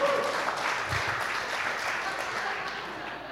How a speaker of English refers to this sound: Come on. Yeah, that's a weak clap, but that's all right.